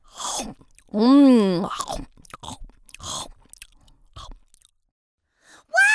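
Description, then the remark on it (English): Several crisp, crunchy chews of a carrot being bitten by a child sound fairly loud in short irregular bursts, mixed with a swooping, hummed vocal sound between bites. “The child had only taken a few bites of Carrot before he put him back down and started devouring the steak again.”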